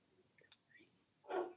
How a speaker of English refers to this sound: The dogs are welcome on this podcast. Listen, we've got two.